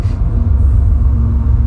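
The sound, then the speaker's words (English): A deep, steady rumble of the idling engines of a train with five engines, heard from inside a car, drones on without a break, loud and dominated by low tones, with a faint hiss above and no voices. “Come on, train, leave. Anytime now. Good heavens, you have 5 engines and you're probably only using 2.”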